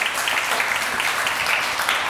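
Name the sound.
audience clapping hands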